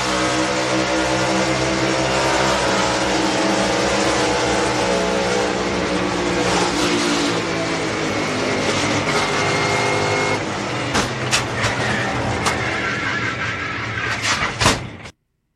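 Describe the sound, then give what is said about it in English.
A race car engine roars at high speed with a steady droning whine, then a series of sharp, loud crunching impacts and scraping bangs as Ryan Preece's car T-bones the passenger side door of Kyle Larson's car at speed, ending abruptly. “Again, if you're watching this on MAB TV, you're going to see this vicious hit where Ryan Preece just T-bones.”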